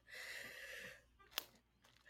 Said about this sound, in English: It's interesting. It's like a sneeze yawn.